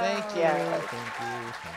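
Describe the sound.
A short burst of crowd applause from a sound effect, steady clapping with voiced, cheer-like tones running over it for a couple of seconds.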